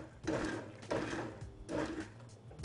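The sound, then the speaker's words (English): A blender, set low with its top vented and filled no more than a third with hot soup, pulses three times in short, loud bursts, each whirring for about half a second, with a low steady hum continuing between the pulses. “I'm going to turn this down low and pulse it a little bit.”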